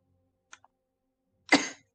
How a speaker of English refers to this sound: The bless you! Oh, that was a cough.